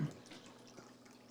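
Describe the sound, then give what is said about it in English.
A brief, quiet sip of an iced drink: a soft watery slurp that fades quickly, with a faint small click partway through and no talking. “But yep, the ice. Take a quick sip.”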